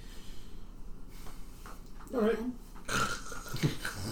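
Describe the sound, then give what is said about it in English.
A person mimics loud snoring, letting out two or three rough, rumbling snorts with noisy breaths between them, against a faint hiss of background noise. “lies down and is immediately asleep. I fucking hate people like and that. And immediately snoring as well”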